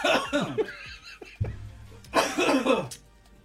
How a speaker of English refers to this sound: Can't be coughing. You might have to move a few feet over or something.